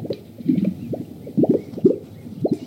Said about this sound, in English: and while they're doing this, they resonate a vocalization that comes from deep inside their chest. It's just an amazingly rich sound of bubbling water percolating through the dry sagebrush.